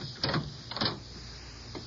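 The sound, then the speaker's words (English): A couple of short mechanical clunks and rattles, like a lock being worked with a key and a door latch releasing, with a faint scrape afterward against a quiet hum. “I can let myself in, but I'd rather you open the door. Come on, open the door.”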